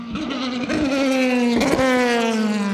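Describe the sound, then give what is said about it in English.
A black and silver Katana motorcycle engine runs steadily outside, a loud, continuous buzzing drone whose pitch dips slightly and then holds, with no voices over it. “What did you think of that motorbike I had outside?”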